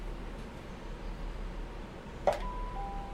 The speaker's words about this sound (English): Hear the ding dong. Yeah. So with this we can make public announcements.